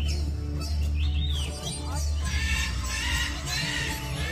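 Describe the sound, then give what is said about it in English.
Birds chirp in quick, repeated calls, some rising and falling in pitch, layered over a steady low rumble of background noise. No one speaks. “you're missing the birds.”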